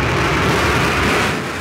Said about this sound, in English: Our booster is about to return to its landing pad. There we see engine relight. That is sonic boom.